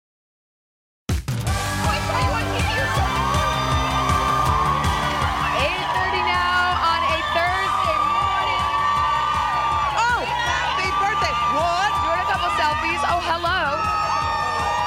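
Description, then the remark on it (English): After a brief silence, a large crowd erupts into loud, sustained cheering, with whoops and shouted voices blending into a continuous roar that holds steady to the end. “Look, we love a great crowd.”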